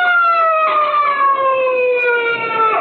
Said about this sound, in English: Hey, that's a police siren. Sounds like they're almost on top of us. Yes, there they are. Look out, they're going to pass us.